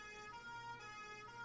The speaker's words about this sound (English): Did you hear that? That was a German police car apparently cruising through the night out here.